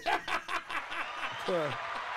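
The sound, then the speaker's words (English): A quick run of about five or six sharp hand claps in a steady rhythm, followed by a brief voiced chuckle as the clapping fades. “Hand clap.”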